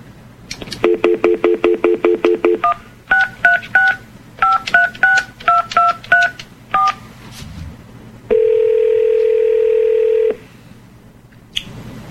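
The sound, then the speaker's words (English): A rapid run of touch-tone telephone dialing beeps, then several more quick groups of key tones, followed by a steady two-second electronic phone tone; clear, with no talking. “See if we can get through this time.”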